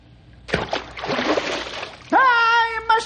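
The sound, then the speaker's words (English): A large fish near a log plunges into water beside a canoe as someone holds a net to catch it, with a loud, churning splash lasting over a second, followed by a short, high, wavering tonal cry. “So when he dives, he'll go into the net.”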